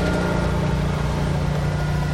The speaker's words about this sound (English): I thought they were all done. They mowed while I was sitting waiting for you, and I thought that all the noise would be gone. But did they mow here already? Yeah. Yeah, they did.